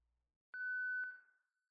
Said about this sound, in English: There is something about the beep, and it does make him uncomfortable, though he cannot admit it to himself. There is something about the sound of it, its tone, the high pitch, and it seems richer to him now, somehow. More complex.